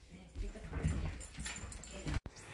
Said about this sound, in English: Sorry, my son came home and my dog wanted to say hi very badly.